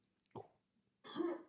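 A cough sound effect from the video game Quake: a brief, sharp burst followed by a louder, longer, raspy hack with a rough voiced tone, clear with no talking.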